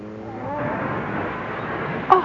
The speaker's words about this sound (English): The bloody fool. Smashed into another car in the fog. Yes. Some kind of blinking light on top of the other car. It's a police car.